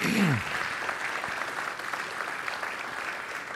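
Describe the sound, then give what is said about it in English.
A large group applauds steadily for volunteers who give their hours to serve, a dense wash of overlapping claps at moderate volume, with a brief low voice fragment at the very start. “And so, yeah, you can clap for that because...”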